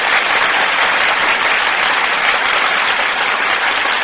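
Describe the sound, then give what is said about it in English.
Sustained applause from a large studio audience as Annabella and Tyrone Power enter the Gulf stage, a dense, steady wash of clapping hands filling the whole four seconds at full loudness, with no voices heard over it. “That applause, ladies and gentlemen, is for Annabella and Tyrone Power, who have just entered the Gulf stage and have taken their places before the Gulf microphone.”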